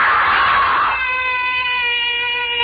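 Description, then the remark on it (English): A loud, high-pitched human scream opens with a harsh, raspy burst, then holds as a long, steady shrill wail for a couple of seconds, alone with no talking. “Why am I screaming?”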